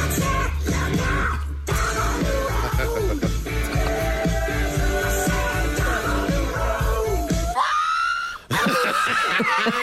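A pug's shrill, wavering screams and yelps while its nails are clipped are cut into a loud, driving rock track with a steady pounding beat, the squeals rising and falling throughout, with no talking.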